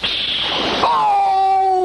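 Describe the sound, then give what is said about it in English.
A loud splash of hot bathwater lasting under a second, quickly followed by a sustained squeal that slides downward in pitch and holds steady to the end. “I have prepared a nice hot bath for you.”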